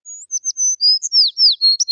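A bird sings a quick, high-pitched run of chirps and whistled notes, bright, with short phrases tumbling one after another and no voices.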